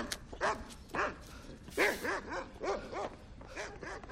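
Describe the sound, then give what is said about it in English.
A shepherd dog barks repeatedly at close range, roughly eight sharp, slightly whiny barks in an uneven rhythm, with no one talking over them. “Actually, this shepherd was pretty good.”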